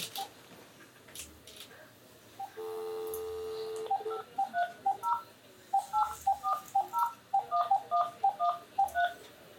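A steady dial tone hums briefly, then about a dozen crisp telephone keypad tones beep in quick, slightly uneven succession, clear with no one speaking.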